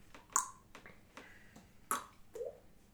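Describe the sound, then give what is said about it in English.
A person imitates slow water dripping with their mouth as a sound effect, making a few sharp, hollow plinks spaced unevenly over a few seconds against a quiet background, with no talking. “So you hear just a steady kind of drip every few seconds.”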